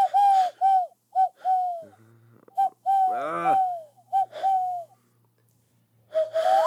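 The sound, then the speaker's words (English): A person imitates an owl with a series of short, breathy hoots in an uneven rhythm, some wavering and strained, with brief pauses and a faint low hum between them. “Oh, he's trying to do an owl noise.”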